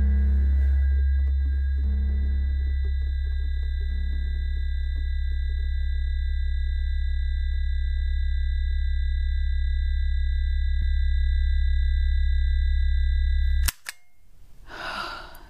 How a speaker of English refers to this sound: Tinnitus.